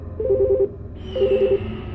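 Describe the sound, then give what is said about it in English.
Two short bursts of electronic telephone tones from a phone, each a quick warbling pulse pattern, separated by a brief gap, heard clearly with no talking. “The phone again.”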